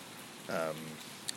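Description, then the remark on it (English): Steady, soft rain patters on the covered roof of a gazebo in a park, a continuous hiss throughout, with a brief voice sound in the middle and a faint tap near the end. “For those of you that tune in for the sweet ASMR vibes that I can provide, this background rain sound might enhance that.”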